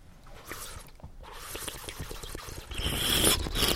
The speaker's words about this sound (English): And then I want you to purse your lips, open it just a little bit, and suck some air over the water like this. Like this.